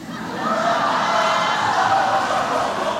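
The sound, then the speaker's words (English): A large crowd lets out a collective gasp that swells into a sustained, loud murmur of shock, holding steady for about three seconds with no clear speech, reacting as New York governor Andrew Cuomo rebukes the president's Make America Great Again slogan. “The governor of New York, Andrew Cuomo, he shocked the crowd when he rebuked the president's Make America Great Again slogan. And the crowd gasped.”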